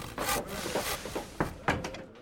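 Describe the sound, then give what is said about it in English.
A wooden door scrapes and rubs as it is pushed shut, followed by two sharp knocking thuds as it settles into the frame, all over a steady rushing background noise. “Close the door, would you, Sergeant?”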